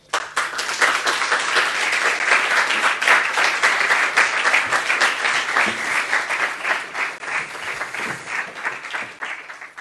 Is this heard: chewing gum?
no